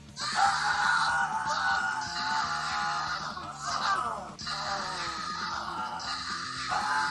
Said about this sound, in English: Lemur and Rocky would begin to scream in horrible pain